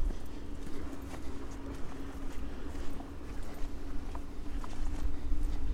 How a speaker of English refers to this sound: It's the bracken hitting my legs and spraying them with water.